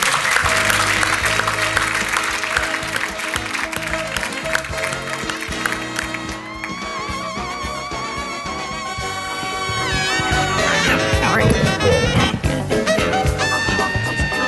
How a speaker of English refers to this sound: So a pretty big round of applause.